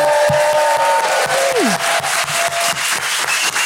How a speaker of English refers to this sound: That's nice. Hey. God, that is, yeah, I knew you'd be good at clapping, but especially, there's 600 people here. You did sound like there were more of you. Thanks, guys.